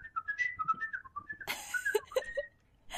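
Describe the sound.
A person whistles in imitation of the birds of a fountain automaton, which whistle from air passing: a run of short, warbling chirps and trills, fairly loud, with a breathy rush of air midway before a few more bird-like notes.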